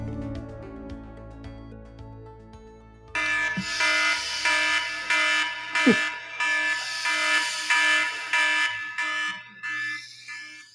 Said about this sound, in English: you heard the alarm sounding. Very I think that was from last night, about 9 o'clock when the final score rolled in.